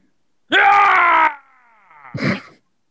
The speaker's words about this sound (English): That's the primal rage that you exhibit whenever you do something like that. You just stand up and scream.